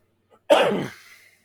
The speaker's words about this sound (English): Even now, like when I cough, was it temples or, you know, the side of your head? Like they hurt when I cough.